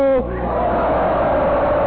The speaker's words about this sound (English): I want to hear a poem that makes this audience yell, ho!